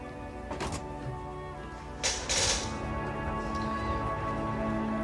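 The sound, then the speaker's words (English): A car door swings shut with a solid thunk, preceded by a fainter click of the handle, over a steady low hum of background noise. “Let's close the door and get out of here.”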